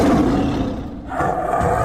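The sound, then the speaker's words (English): A loud, rumbling tiger roar fills the short stretch, easing off slightly midway before swelling again, with no talking. “you now have this tiger cornered. It bares its teeth at you.”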